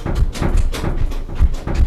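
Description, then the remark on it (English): A door rattles as a little helper on the other side jiggles it trying to open it, with a steady series of short clattering bursts and dull low thumps repeating roughly every half second, fairly loud and with no talking. “I have a little helper on the other side of the door trying to open right now. Can you hear him jiggling?”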